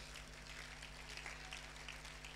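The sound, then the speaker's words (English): A large church crowd claps for the Lord Jesus, a dense, even patter of many hands, with a low steady hum underneath and no voices. “Clap for the Lord Jesus.”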